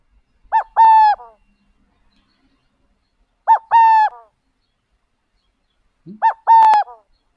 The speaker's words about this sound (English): And this next one is a song by the subspecies, the Western burrowing owl.